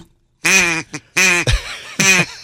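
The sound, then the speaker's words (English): A duck call blown in three loud, raspy quacks with a short squeak between, buzzy, imitating a duck's quacking with no talking over it. “Do you want to try one of these duck calls?”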